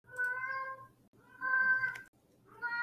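A cat named Frank meows repeatedly, three drawn-out, tonal cries in a row with brief pauses between them, fairly clear with no talking.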